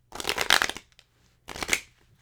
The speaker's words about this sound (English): first thing I'm going to do is shuffle these cards up. And I have no rhyme or reason with this. I just shuffle them just like you would shuffle any old card deck. I like to shuffle them three times.